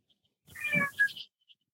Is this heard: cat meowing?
yes